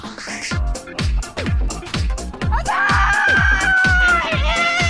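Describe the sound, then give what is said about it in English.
A person lets out a loud, drawn-out roaring scream in imitation of a lion, rising partway through and sustained for a couple of seconds over a steady thumping beat. “So maybe just get a little bit more, like, instead of being a cat, maybe be a lion. Rawr.”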